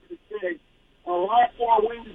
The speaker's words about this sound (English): Can't hear you. Your phone, it sounds like you're underwater.